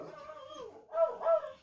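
A dog whines in a wavering, high-pitched tone, then lets out two short, louder barks. No one speaks.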